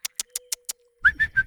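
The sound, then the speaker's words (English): A quick, even series of five sharp tongue clicks, followed by three short, bright whistled notes repeated in a steady rhythm, fairly loud with no talking. “whistled and clicked her tongue.”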